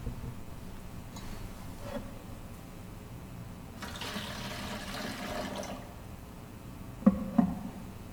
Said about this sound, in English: He moved from one person to another, and all that was heard was the quiet splash of water going over feet.